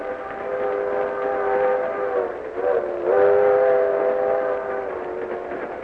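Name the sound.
train running on rails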